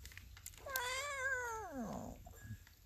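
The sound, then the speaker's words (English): A single drawn-out, wavering cat-like meow made by a human voice imitating a threatening cat toward kittens, rising then sliding down into a low growling tone, fairly loud, with no other talking. “That was threatening. I didn't mean to threaten you, kittens. I'm sorry. I speak cat.”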